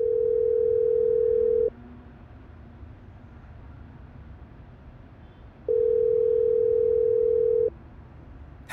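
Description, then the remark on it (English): A steady electronic ringback tone of an outgoing phone call sounds twice, each burst lasting about two seconds with a long silent-ish gap between, heard clear over faint background hiss. “Call Nyssa.”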